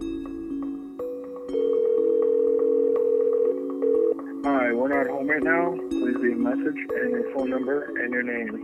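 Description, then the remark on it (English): A phone line rings out with steady electronic ringback tones for about four seconds, then a recorded-sounding voice starts talking over the line. “We tried calling her again the next morning.”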